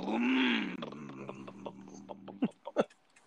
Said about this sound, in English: So... this van is considerably louder than the other one.